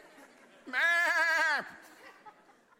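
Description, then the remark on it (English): A single person imitates a sheep's bleat, a wavering, strongly vibrato baa held for about a second, loud, with quiet background noise before and after. “And once that's done, that sheep will start bleating. Not bleeding, but bleating. Crying out for help.”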